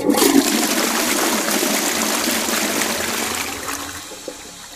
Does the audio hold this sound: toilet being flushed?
yes